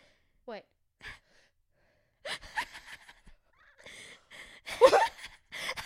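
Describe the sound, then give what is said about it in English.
A person fakes a sneeze: a few short, breathy gasps build up unevenly over several seconds before one loud, harsh burst near the end, followed by a little voiced noise. “The build up was believable, but the actual sneeze was shithouse, to be honest.”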